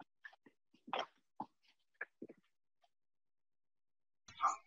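Someone blows their nose: a string of short, breathy snorts and sniffs, then one longer, louder honking blast at the end, with no talking.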